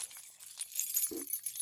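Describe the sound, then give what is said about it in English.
Keys in pockets jangle and rattle continuously, a bright metallic clinking, fairly soft, with one dull low thump near the middle and no voices. “Keys out of my pockets. They keep rattling.”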